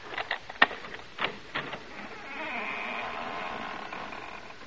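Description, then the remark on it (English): A few sharp clicks and knocks, then the front door of a house is opened and its hinge lets out a long, wavering, high creaky squeak that drags on for a couple of seconds, moderately loud with no voices. “Maybe you heard the hinge squeak a little.”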